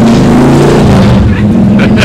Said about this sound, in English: And there's a loud-ass motorcycle that's drove by.